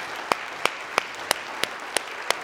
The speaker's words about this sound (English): Come on and give the Lord a hand clap today, please.